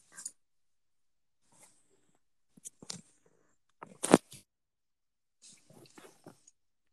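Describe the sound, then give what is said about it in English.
A dog being wrestled in play: scattered scuffling and rustling bursts with soft snuffles, broken by a sharp louder thump or huff midway, then more irregular scrabbling. No one speaks. “I'm wrestling my dog right now.”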